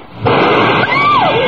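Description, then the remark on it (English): A sudden loud blast as a glass is blown apart by an explosive-loaded device pointed at it and shatters into thousands of tiny pieces on the floor, followed by a second of dense, roaring crash noise with faint ringing tones sweeping through it. No voices. “It's on the floor. It's broken into thousands of tiny pieces.”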